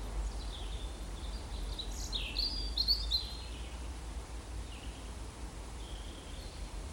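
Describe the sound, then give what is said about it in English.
A wren sings a quick run of high, twittering notes, strongest in the first few seconds, then fades to scattered chirps, over a steady outdoor hiss and low rumble. “Wren's song is so special from such a tiny bird.”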